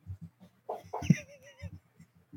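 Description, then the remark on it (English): A person vocally imitates a goose from Untitled Goose Game, giving a couple of nasal honks with a wavering, squawky tone, set against a soft rhythmic background beat. “That's what a goose sounds like.”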